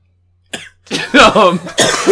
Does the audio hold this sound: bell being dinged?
no